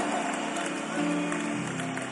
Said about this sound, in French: Give the Lord a mighty clap of our hands. Applaudissez l'Éternel.